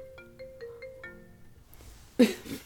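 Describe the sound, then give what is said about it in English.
A phone ringtone chimes a short melodic tune of repeated tonal notes for about a second and a half, fairly quiet, followed by a brief burst of rustling noise. “How is your phone ringing on my...”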